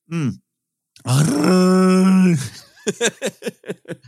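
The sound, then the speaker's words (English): A voice imitates a Wookiee roar: a short yelp, then a loud, sustained, wavering growl-howl lasting over a second, followed by a rapid run of about seven choppy grunting bursts. “I don't know if I've ever heard a truly bad Wookiee roar.”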